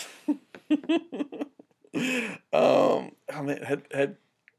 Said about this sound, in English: I was, like, yawning, and for whatever reason, my Darcy voice just came out like that.